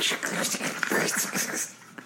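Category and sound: household object, package being opened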